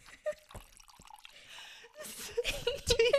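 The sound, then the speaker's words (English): Liquid spills and drips in a quick run of small splashes and wet droplet sounds, growing louder and busier toward the end, with no talking. “Oh man, I just spilled this shit.”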